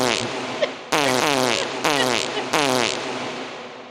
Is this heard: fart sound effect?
yes